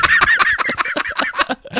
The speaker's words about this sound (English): Oh, the birds. Do you know when the birds are being like daft?